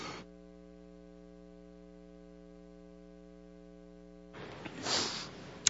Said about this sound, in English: All right, here we go. That was the last cough. I hope.